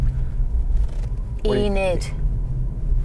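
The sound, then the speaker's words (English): Steady low road rumble from inside a moving electric SUV as it swings round a corner by a church, with a brief drawn-out vocal sound rising above the cabin noise midway through. “One word review as we swing round the church.”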